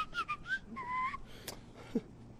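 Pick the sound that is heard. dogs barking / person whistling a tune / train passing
person whistling a tune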